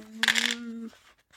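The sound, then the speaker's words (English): A brief rattle of four dice clattering across a hard surface, lasting only a moment, over a steady low hum that fades out shortly after. “I rolled the first 4 dice and I made it.”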